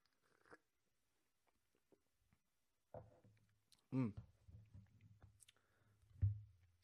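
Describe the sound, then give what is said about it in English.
Sipping espresso from a cup: a faint clink, then a short wet slurp and swallowing noises, with a soft thud near the end. “We move on to Johnny Winfield's comment after I sip some espresso”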